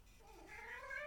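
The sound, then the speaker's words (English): A single drawn-out cat meow, its pitch sliding upward over about a second, heard alone and fairly softly with no talking. “You know, you're a cat.”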